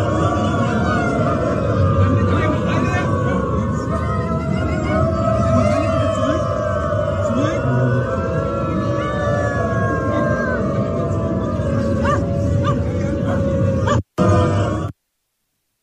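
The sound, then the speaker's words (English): A crowd of people wearing dog masks at a railroad station, many on all fours, imitate dogs with loud, overlapping, wavering howls and groans. The sound is sustained almost without pause for about fourteen seconds before cutting off abruptly. “Oh, they sound like look, there are people wearing dog masks.”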